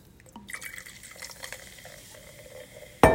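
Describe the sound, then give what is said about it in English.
An extra-large bottle is opened and poured, with fizzing and bubbling liquid, a brief trickle, and a sudden louder burst right at the end. “Wow, that was very, very fizzy.”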